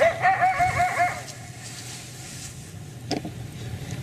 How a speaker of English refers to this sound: All right, now if you heard that, you might go, okay, that's coyote. Let's see if they start yipping.